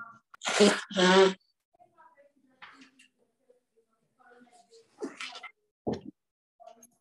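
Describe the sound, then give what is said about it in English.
Two loud sneezes caused by hay fever burst out back to back near the start, followed by quieter scattered vocal sounds and brief breaths. “And you must excuse me sneezing because the hay fever is very bad today.”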